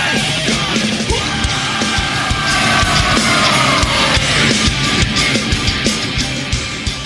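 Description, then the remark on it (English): A crowd of people screams loudly and continuously for about seven seconds, a dense, sustained wall of voices with no talking. “Are you ready to scream?”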